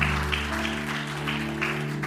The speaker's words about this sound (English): Can we give our Lord a round of applause and just give him praise?